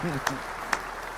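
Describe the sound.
A brief round of applause: three sharp, evenly spaced hand claps, about half a second apart, following a short murmur of voice at the start.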